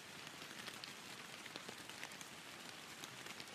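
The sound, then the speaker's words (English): Cold, wet, steady sleety snow rain pattering densely on surfaces outdoors, with scattered drips standing out from the constant wash of sound; a fairly soft, continuous ambience with no voices. “this is quite the snow rain”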